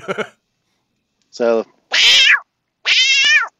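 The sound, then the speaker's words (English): A person imitates a cat's meow, giving three loud, drawn-out mewing calls, the last two high and strained, after a brief vocal burst at the start, with pauses between. “I can make a cat noise and talk at the same time, but I can't do a screaming singing at the same time.”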